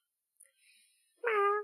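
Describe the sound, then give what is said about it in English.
A single short, nasal meow made by a human voice imitating a cat, clear, preceded by a faint breathy hiss and a tiny click. “Oh, a cat?”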